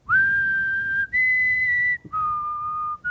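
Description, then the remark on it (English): A person whistles a slow, eerie tune of long sustained notes, each held steadily before shifting pitch, with brief pauses between phrases and no talking over it, imitating the Big Bad Wolf's whistle, his calling card when approaching, in the movie with Puss. “And he has this weird little calling card thing that he just does this whistle.”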